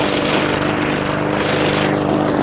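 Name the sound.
lawn mower engine running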